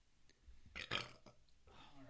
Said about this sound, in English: The burping's going to happen. We're sorry. What? All right. Drinking beer and we're going to start burping? Who'd have thought?